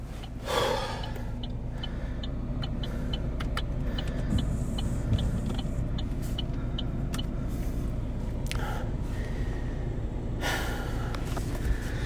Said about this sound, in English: So this is me just getting back into the car after some extreme drama. Here we go.